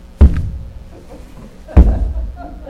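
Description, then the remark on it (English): Two heavy, booming foot stomps, imitating a Japanese sumo wrestler stomping in the ring, land about a second and a half apart, each a deep thud on the floor with a short rumbling decay, loud. “I'm planting my feet, you're not moving me from this spot”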